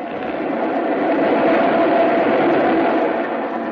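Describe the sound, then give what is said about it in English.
An express train roars steadily past a station platform without stopping, a loud, continuous rumble and rattle of wheels and cars that holds its full strength throughout without slowing. “Train coming.”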